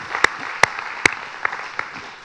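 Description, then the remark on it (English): A church audience applauds steadily, a dense patter of many hands clapping at once, with a few sharper, louder claps standing out above the wash. No one speaks. “Why don't you give each other a big round of applause for just the royal law of love at work in a beautiful, wonderful way.”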